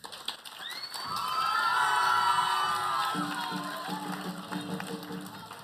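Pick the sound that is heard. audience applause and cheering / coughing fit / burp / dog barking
audience applause and cheering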